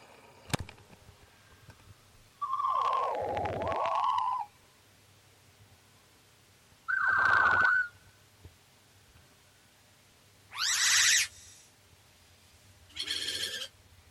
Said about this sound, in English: Like just a bunch of buzzing. Laser noises.